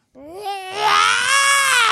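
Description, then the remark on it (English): A voice imitates the cartoon character Banshee's shrill scream, starting as a rising whine, then jumping into a loud, piercing, sustained wail that holds steady for over a second. “His scream is not what I had read, but instead like...”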